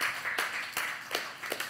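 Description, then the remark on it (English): A crowd claps in a steady rhythm, with sharp, loud claps landing about every few tenths of a second over a continuous wash of softer applause. “You know who the people are clapping?”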